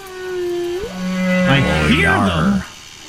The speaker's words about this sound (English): I hear them. I think that's a whale. 'Tis no fluke. It's a whale.